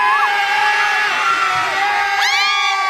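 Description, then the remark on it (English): A loud crowd cheers and whoops continuously in response to a track played by a DJ, with high rising and falling shouts and whistles layered over a dense roar of many voices, sustained throughout. “We want to ask the crowd what we think of that track.”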